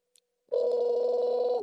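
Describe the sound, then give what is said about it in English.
A phone rings once on a call placed from a payphone by a gas station in Dover, Illinois, with a steady, buzzy electronic tone that lasts about a second, following a brief silence broken only by a couple of faint clicks. No one speaks. “Oh, seems to be the phone is ringing.”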